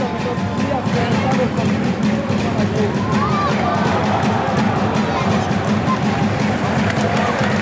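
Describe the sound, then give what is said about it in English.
The Monaco Ultras chant loudly and continuously in a football stadium during a Monaco men's match, a dense roar of many voices with a steady rhythmic pulse running through it, unbroken for the whole stretch. “Oh, the crowd in full flow now.”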